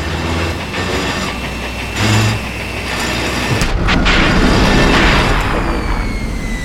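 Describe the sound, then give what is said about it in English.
A heavy drill in an open pit black opal mine rumbles over a steady low drone, then hits a snag with a sudden clanking jolt partway through before grinding on more roughly, a thin whine rising above it. “The drill hit a snag again.”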